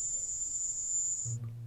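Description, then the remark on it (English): A recording posted by CNN: a thin, piercing high-pitched tone, faintly cricket-like, holds steady for over a second before cutting off abruptly, leaving only a soft low hum behind. “Sounds like crickets to me.”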